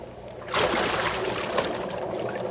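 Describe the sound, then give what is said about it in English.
A sudden, loud splash about half a second in as a person drops about 12 feet into water in a sewer, followed by steady churning and sloshing that continues until the end. No voices. “Come on in. The water's fine. It's about a 12-foot fall. Stand to the right. I'm coming down.”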